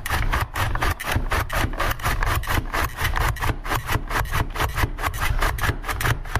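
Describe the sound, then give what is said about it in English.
Five potatoes being sliced on a slicer that drops the slices into a drawer: a fast, steady rhythm of rasping, scraping strokes, about three or four a second, continuing loudly with no talking. “The slices started coming out over the edge of the drawer.”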